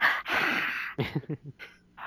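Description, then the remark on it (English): A voice imitates heavy, raspy breathing that verges on snoring: two long noisy breaths, then a quick run of short guttural, voiced rasps and a final breath. “I think they heard heavy breathing, like, Darth Vader-esque.”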